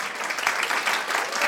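A short burst of applause, dense and steady clapping from many hands filling the whole moment at moderate loudness, with no voices over it.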